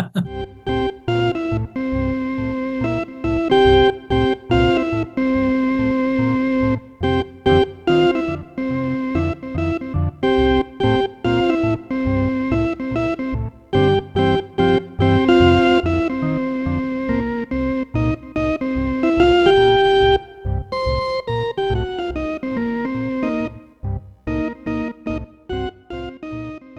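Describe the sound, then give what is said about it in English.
Organ music by an artist plays on its own for nearly half a minute: bright, sustained chords in rich tones, moving in steady rhythmic pulses with brief breaks and shifting melodic lines. “And that amazing organ music you hear right there by … as we intro into today's show.”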